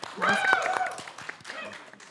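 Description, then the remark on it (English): A short burst of audience applause, loudest at the start then thinning into scattered claps, with cheering and whooping voices mixed into the crowd noise. “Round of applause.”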